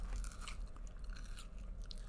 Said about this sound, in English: So this is Crystallized Candied Ginger Sweet and Spicy. She's Crystallized, Mama. Give that a taste. And it's very crunchy.